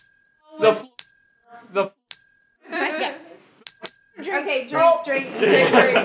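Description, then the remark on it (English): A small bell rings sharply several times as a signal in a drinking game, each ding ringing out briefly, while people laugh and talk loudly around it. “You have to drink if the bell rings.”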